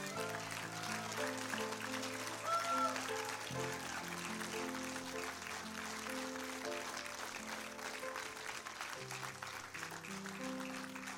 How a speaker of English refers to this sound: Somebody ought to start applauding right here.